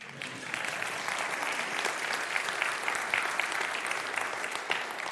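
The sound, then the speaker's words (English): An audience breaks into steady applause, dense overlapping claps that swell quickly and hold at an even, moderately loud level for several seconds. “Now you may clap.”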